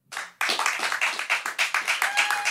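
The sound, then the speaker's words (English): An audience claps hands to vote for show number one, a dense burst of applause that starts abruptly and continues as a rapid, fairly loud patter with slight rhythmic pulses, no voices standing out. “If you think number one was most justified, this crazy bitch with the bucket, clap your hands.”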